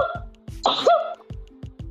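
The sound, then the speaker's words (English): A single abrupt sneeze, a sharp, breathy burst of noise with a brief voiced squeak at its end, set among a few soft, low thumps. “Excuse me. Dang, this got me so effed up. I'm sneezing.”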